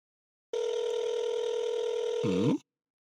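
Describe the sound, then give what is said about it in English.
A single steady, buzzy phone ringing tone drones for about two seconds, then warbles downward and cuts off, an unanswered call to a Walmart store's Stratford location. No voices, just the ring sounding clearly on its own. “I don't think they're going to pick up the phone, yo.”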